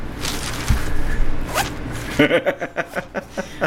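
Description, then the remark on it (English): The zipper on a small dice bag is pulled open, starting with a few quick rasping tugs and then a steady run of rhythmic, ratcheting teeth clicks. “Just for clarity, that's your dice bag unzipping.”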